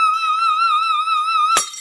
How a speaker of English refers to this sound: And can you really break a wine glass just by singing a high note?